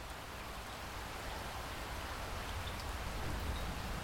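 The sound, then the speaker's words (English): Steady rain patters against an old window during a storm at a hotel, with a soft, constant hiss of wind-driven drops, even and unbroken throughout, fairly quiet and with no voices present. “The sound of rain and wind against an old window is usually fairly soothing, but something's just keeping you up today.”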